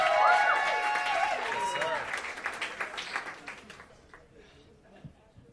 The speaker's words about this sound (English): clap your hands!